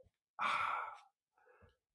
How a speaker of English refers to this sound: Sorry about the sniffing there, guys.